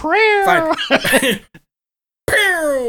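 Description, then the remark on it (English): A person's voice imitates an angry cat, with loud, drawn-out yowls broken by harsh hissing, spitting bursts, then a brief silence before another falling yowl. “the exact sound of, like, a cat when it sees another cat it doesn't like.”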